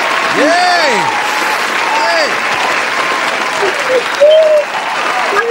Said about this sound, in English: So give her a hand clap again.